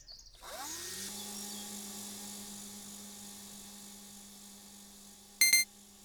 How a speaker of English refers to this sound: Is that a drone? It's more than that.